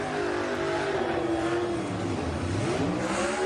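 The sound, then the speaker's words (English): Christopher Bell's race car revs and roars continuously while its tires spin in a burnout doing donuts, burning down a used set of Goodyear Eagle tires after his win at New Hampshire for Joe Gibbs Racing; a loud, steady wash of noise with the engine pitch rising and dipping throughout. “As Christopher burns down a used set of Goodyear Eagles.”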